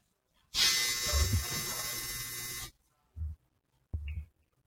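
A dryer blasts with a loud, steady whooshing roar for about two seconds, then cuts off, followed by two brief bursts of the same noise.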